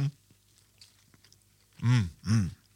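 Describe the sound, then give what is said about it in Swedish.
Someone chews a saffron bun: after a quiet stretch with faint low rumble, two loud, full bursts of mouthy chewing come in quick succession, with no talking. “Så nu smakar vi bullen.”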